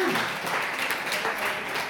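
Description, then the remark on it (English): A steady burst of applause from a crowd for the people who found the shepherd figures, many hands clapping in a dense, even wash of sound that holds at a constant loudness for the whole couple of seconds. “A big round of applause for these guys.”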